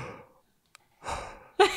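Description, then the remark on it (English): A loud, breathy yawn right up against the microphone: an airy exhale fades out, a short pause with a tiny click, then another drawn-out breath ending in a sharp gasp. “You gotta yawn straight into the mic like that. You're gonna make everybody listen to this yawn.”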